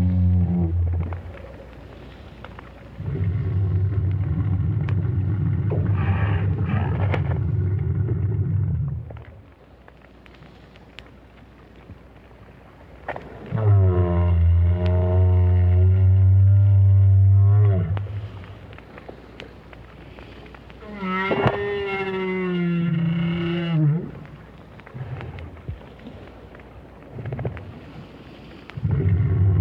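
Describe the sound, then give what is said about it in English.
A lone adult whale calls underwater in long, deep moaning tones, some rising into harmonic, wavering cries, separated by short pauses over a low, steady ocean rumble; recorded by whale scientist Roger Payne with a hydrophone at the bottom of the sea near Peninsula Valdez, Argentina. “But the renowned whale scientist was somewhat perplexed by the sounds made by this lone adult.”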